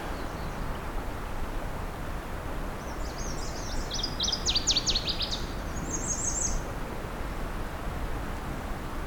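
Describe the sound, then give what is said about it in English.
A northern waterthrush sings a brief run of sharp, high, rapid chipping notes over a steady rushing wash of a creek flowing into a bay. “It's definitely a northern water thrush.”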